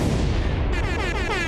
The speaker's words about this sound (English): Please, as customary on this podcast of ours, can you hit all sorts of drops, bombs, gunshots, or whatever to welcome us in?